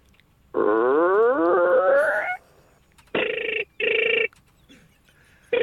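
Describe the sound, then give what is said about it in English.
A voice mimics stepping into a red phone box: a long, rising creak like a heavy door swinging open, then two short, buzzy ring-like bursts, all loud. “Now we know that you're walking into a red phone box.”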